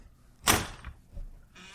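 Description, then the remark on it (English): Door number two opens with a sudden sharp rattle that fades over a moment, followed by two soft low thumps and a faint airy hiss at the end. No one speaks. “Now I'm going to show you very quickly what's behind door number two.”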